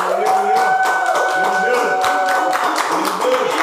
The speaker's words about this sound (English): Everybody start clapping right now.